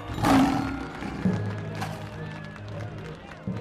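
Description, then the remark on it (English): A lion named Kit Kat, in a lion-taming act, gives one loud roar that bursts out at the start, then trails off into a low, rumbling growl over steady background noise. “Tonight, I am going to tame the world's most fiercest lion, Kit Kat!”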